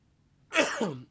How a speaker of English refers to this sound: I got to sneeze. Sorry.